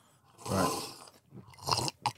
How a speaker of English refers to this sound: If you would like to give it a loud slurp and spray it all just over your taste buds. Smelling it first, like it's wine.